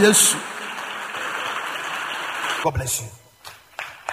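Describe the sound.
A crowd claps for Jesus after a prayer, steadily for a few seconds, a dense wash of many hands clapping, then fades out as a voice speaks briefly near the end.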